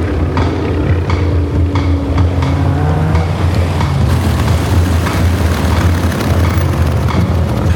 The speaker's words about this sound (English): Who else is up in this? I know that plane. It's a Gullwing. Where do I... Stinson Gullwing.